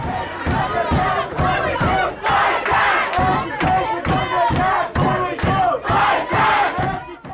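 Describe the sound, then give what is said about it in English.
A crowd of student protesters at a school board meeting chants loudly in unison, "Our education is under attack. What do we do? Fight back," many voices rising and falling in a steady, insistent rhythm of short shouted bursts that continues throughout. “They storm the school board meeting.”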